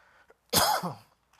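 One sharp, close cough bursts out loudly, trailing off into a brief rasping, voiced tail, with near silence on either side and no talking.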